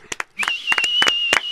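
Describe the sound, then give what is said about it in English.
Applause as a handful of sharp, scattered handclaps, about eight in an uneven rhythm, with a thin, steady high-pitched whistling tone sustained beneath most of them. “You know how a band comes on and says, well, it's going to be our last song, and everybody applauds?”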